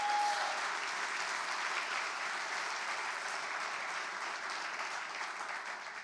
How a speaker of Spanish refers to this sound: Un aplauso al Señor que está aquí esta noche.